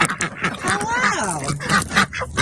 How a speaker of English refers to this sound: Good morning, chickens and ducks. How's everyone doing this morning?